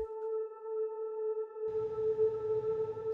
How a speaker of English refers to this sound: Let's listen to the first pad here, which, you know, this looks extremely simple. Sine waves, a little bit of attack and release. The stuff comes afterwards though. The serum patch is like, you know, non-existent basically, all unison.